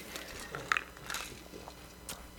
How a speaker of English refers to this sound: The next three are going to be rapid fire, so hang with me as I take one sip from this purple cup.